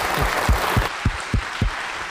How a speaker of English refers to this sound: Please, a round of applause for all of our participants. Thank you so much.